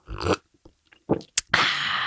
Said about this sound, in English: So cheers to all the people in love out there as I sip my Jack Daniels as a toast to you.